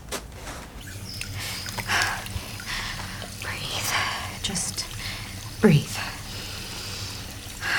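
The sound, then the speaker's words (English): A bathroom tap runs steadily in a steady wash of hissing water, with faint breathy voices murmuring and a few brief splashy bursts over it. “I shut the water off and I turn around to grab a towel.”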